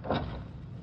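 door being opened

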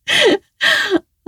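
sharp gasp of shock

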